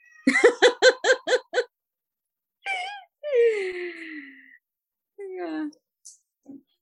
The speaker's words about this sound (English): He meowed and agreed. Yeah, he meowed. He's got the high voice.